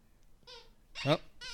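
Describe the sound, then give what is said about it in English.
A squeaky toy is squeezed three times in quick succession, each squeak a bright, high-pitched, tonal whine, the middle one loudest and slightly harsher, with no talking over it. “The old man's got a squeaky toy.”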